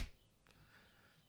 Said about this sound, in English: Anyway, we need to clap. Okay. Do you want to count the clap? 4, 3, 2, 1.